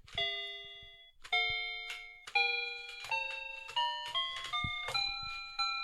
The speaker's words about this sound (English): So, you know, so this is a little keyboard thing that you put on the floor. It's made out of fabric. And when you step on the various keys, it makes noises as such.